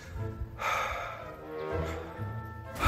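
Heavy, open-mouthed breathing, with two or three slow, airy breaths drawn in and pushed out over a low background rumble. No one speaks.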